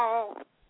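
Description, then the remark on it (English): A person lets out a single short, loud yowl like a startled cat, a strained meow-like cry that breaks off quickly, followed by a brief pause and faint rustling. “You sounded like you fell down when you were saying. Like a cat that fell off a chair.”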